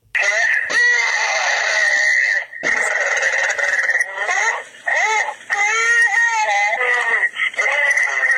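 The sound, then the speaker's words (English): Strained, gurgling gasps like a man struggling for air underwater: a wavering, high, harsh vocal tone that runs almost continuously for several seconds, broken by a few short catches of breath. “To me, it sounds like someone is like gasping for air underwater.”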